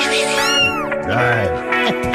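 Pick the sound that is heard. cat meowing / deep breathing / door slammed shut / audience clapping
cat meowing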